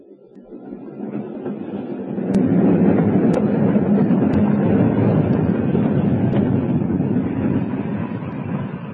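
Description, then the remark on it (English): A train rumbles along the rails with a heavy, steady roar and a regular clack of wheels over track joints about once a second, the noise easing slightly toward the end as the train begins to stop. “We're stopping. Signals, I suppose. This will make us later than ever.”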